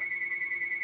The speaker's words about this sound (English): Phone's ringing.